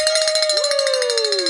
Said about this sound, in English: So if you'll reach over there and grab that bell so we can ring the bell for meeting our goal for the 9 a.m. hour.